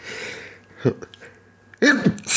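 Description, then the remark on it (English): A person sneezes once, loud, in a sharp burst that follows a few soft breathy sounds and a short pause. “I'm going to sneeze.”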